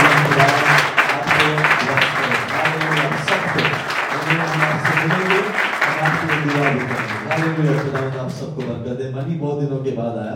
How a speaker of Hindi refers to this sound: I will सब नए लोगों के लिए जोरदार ताली बजाएं।